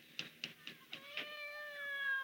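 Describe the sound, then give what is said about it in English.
A cat meows: five short, evenly spaced cries in quick succession, then one long, drawn-out wavering meow that trails off. No one speaks. “Here, kitty, kitty, kitty, kitty, kitty. Is that you, Claude?”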